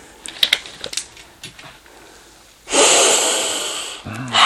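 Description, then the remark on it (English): A single long, loud sniff as someone breathes in a drink's aroma, after a few faint clicks and taps, with a brief voice starting right at the end. “I almost like get a little spice, like a cinnamon maybe, or like a nutmeg on the sniffs.”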